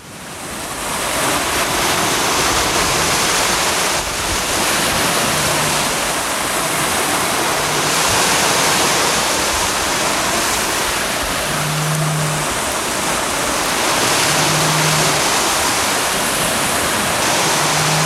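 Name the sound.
flowing water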